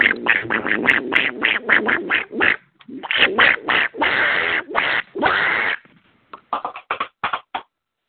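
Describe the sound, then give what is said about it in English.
A person loudly imitates a duck, letting out a rapid string of nasal quacks, then a few short, choppy ones after a brief pause. It sounds slightly tinny, like it's coming over a phone line. “Yeah, is there somebody on here that actually wants to say something that's worth something saying instead of making stupid animal noises?”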